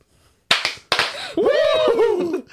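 Two sharp, loud hand claps about half a second apart, followed by a long, high, wavering Ric Flair-style "Woo!" whooping yell from a voice.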